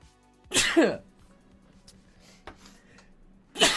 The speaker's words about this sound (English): I squeezed my nose to do Bane and I made myself sneeze.